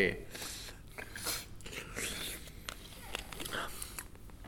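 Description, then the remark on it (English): Quiet slurping of wine as someone draws air through a mouthful to aerate it, a run of hissy, bubbling sips and mouth noises over a few seconds. “Oh, I like the way you drink your wine. You look like you're drinking your wine very good there”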